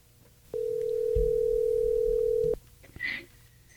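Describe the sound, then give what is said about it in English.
A telephone dial tone hums steadily for about two seconds with a low rumble beneath it, then cuts off; a brief high-pitched electronic beep follows as the call is dialed. “So anyway, well, let's call him. Dial.”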